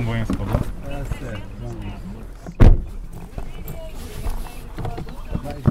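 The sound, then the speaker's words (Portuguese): Someone gets into a ride-hailing app car and a single loud door slam thuds shut partway through, with people talking indistinctly before and after. “E entra num carro de aplicativo.”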